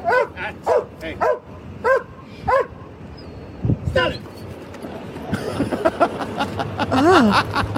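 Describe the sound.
A large dog barks repeatedly in loud, rhythmic bursts, then shifts to frantic, overlapping barks and yelps amid background commotion and shouting voices.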